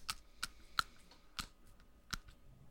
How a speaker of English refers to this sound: Yeah, it's got a little bit of a squish to it. Now I have to throw this out because I can't put back a pencil with a bite mark.